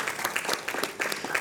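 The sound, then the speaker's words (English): A church audience claps steadily for the man who will teach a Wednesday evening class, a dense patter of many hands overlapping into a continuous, moderately loud burst of applause with no voices over it. “Let's give him a clap.”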